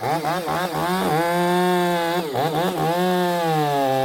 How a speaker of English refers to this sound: With the chainsaws running, this team, members of the Pilot Rock Hand Crew, is learning how to climb trees and cut off dead, beetle-ravaged tree limbs, and how to completely take down giant redwood trees,